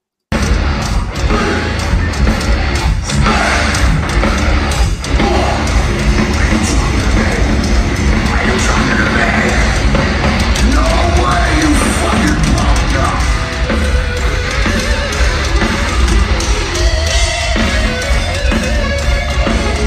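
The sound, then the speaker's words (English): A loud, distorted phone recording of a live concert, with an electric guitar solo smeared into constant roaring crowd and room noise that stays at one level for the full length. “So, all right, we'll play through the solo.”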